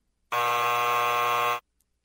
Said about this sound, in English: Hit the buzzer.